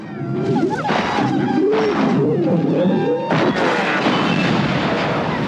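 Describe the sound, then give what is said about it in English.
The chicken walker collapsing, a sound effect from Return of the Jedi: loud, dense metallic groaning with wavering low tones, then a heavy crash about two-thirds through, followed by a continuing rumble of debris. No one speaks. “And then the chicken walker falling down.”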